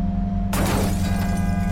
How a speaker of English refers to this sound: And then a crash shatters the silence, followed immediately by the shriek of crumpling metal, the tinkle of shattered glass.